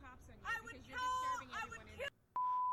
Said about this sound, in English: Oh, there it is. There's the beep. Count the beeps. Two, three, two? That could have been three.